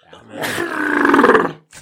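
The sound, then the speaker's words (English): A single loud sneeze, drawn out and throaty, building into a strained voiced burst for about a second before cutting off, then a brief faint breath after it. “Bless you.”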